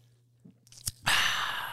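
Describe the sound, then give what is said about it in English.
A sip of a cheap pub beer: a soft click and a quick wet gulp, followed by a long, breathy exhale that fills the rest of the moment. No one speaks. “And now I'm going to taste it. Yeah, take a sip of that.”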